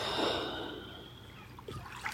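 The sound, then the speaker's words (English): A soft, airy deep inhalation drawn slowly through the nose, fairly quiet, fading out before a few faint rustles and clicks; no one speaks. “Breathing in deep,”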